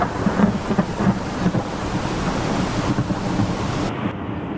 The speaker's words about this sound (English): This damn storm is going to ruin everything. We're going straight into the heart of it.